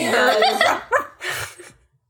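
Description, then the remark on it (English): A person briefly imitates a dog's growl with a rough, voiced snarl, followed by a couple of short breathy bursts before it fades out. “He growls like a dog.”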